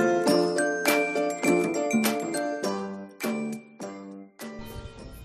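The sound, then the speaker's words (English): Church bells ring in a quick, uneven peal, roughly eight overlapping strikes whose bright, layered tones linger and blend together at a steady moderate volume, with no voices, heard while out on a run. “I don't know if you can hear those church bells.”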